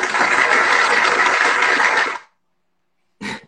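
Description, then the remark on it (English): A loud, steady whirring motor like a blender runs for about two seconds and cuts off abruptly, followed after a pause by a brief second burst. “You look like he using the blender right now.”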